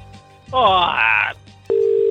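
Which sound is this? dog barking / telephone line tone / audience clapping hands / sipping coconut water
telephone line tone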